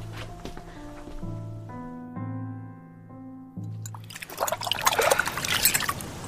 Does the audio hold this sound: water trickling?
yes